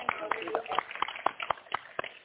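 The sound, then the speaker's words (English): An audience at a church service claps hands for Jesus in a steady, quick rhythm, about four sharp claps per second, with a murmur of voices running underneath. “Come on and clap your hands for Jesus.”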